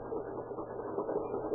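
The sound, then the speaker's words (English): A pump runs with a steady, continuous mechanical drone, a low-to-mid hum with slight rhythmic pulsing and no voices over it. “Still hear that pump?”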